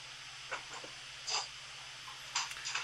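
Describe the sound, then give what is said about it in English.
A few short, scratchy dog noises, like snuffling or shuffling, come in scattered bursts with a low steady hum underneath. No one speaks. “I'll just put my sort of dog impact into tonight's podcast.”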